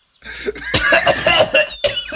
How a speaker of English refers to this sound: I immediately start coughing and put the bag away.